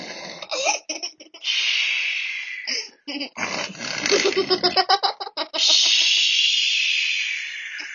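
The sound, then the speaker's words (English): A voice imitates a dad's loud snoring as he sleeps at the entrance of a tent: long raspy, hissing breaths broken by a stretch of rapid snorting, sputtering pulses, then another drawn-out wheezy exhale, with no words spoken. “Now, Dad was sleeping at the entrance of the tent and Dad was snoring because all dads snore.”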